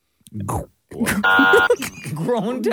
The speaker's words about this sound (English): Hit the buzzer, man.